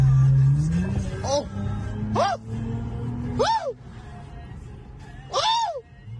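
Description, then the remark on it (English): A car engine drones low and steady in traffic, rising slightly at the start, while several short, arching vocal exclamations break out over it in a loose rhythm. “Yeah, let's get by this dump truck here.”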